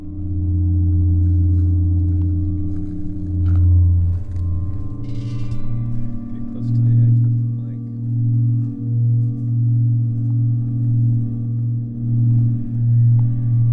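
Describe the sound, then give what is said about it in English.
Titanium bells molded by sound artist Ross Bearable ring at a home in Pagosa Springs, with people standing with their heads inside them, giving deep, sustained humming tones that shift partway through, then settle into a low drone with a slow, regular pulsing beat. “Ross Bearable is showing us bells and wind harps he's molded from titanium. The group takes turns standing with our heads inside the bells as they ring.”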